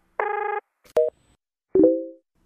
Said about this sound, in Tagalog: Try kong tawagan ulit. Oh, nagre-ring yung phone niya. Pero bakit hindi man lang siya sumasagot?